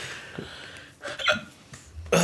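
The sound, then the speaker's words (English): A few short, sharp hiccups, one a bit after the first second and a louder one near the end, with soft breathing between them and no talking. “I think I have the hiccups now, right before we record.”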